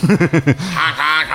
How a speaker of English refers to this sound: It's mostly honking. It's well, we have a lot of ducks, first of all